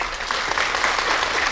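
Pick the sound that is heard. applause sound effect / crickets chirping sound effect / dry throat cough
applause sound effect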